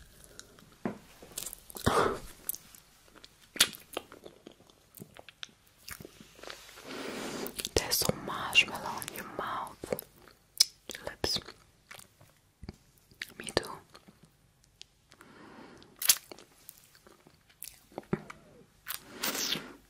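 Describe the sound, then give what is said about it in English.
Soft, squishy chewing of a marshmallow, with moist mouth clicks and irregular bites, quiet and close-miked, mixed with faint whispering between the chews. “neck massage and EATING a MARSHMALLOW”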